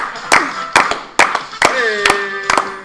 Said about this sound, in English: So let's get this going here. We gotta get the little Family Feud thing. Come on, clap along. That's what they do, you know?